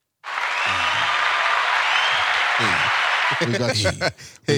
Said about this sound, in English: Can we do a sound effects for clapping right there?